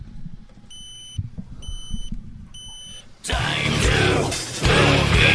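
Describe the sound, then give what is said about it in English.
An electronic timer beeps three times at steady intervals, each tone short and high-pitched over a low background rumble, before a loud, dense wash of music abruptly takes over. “It's like their timer going off.”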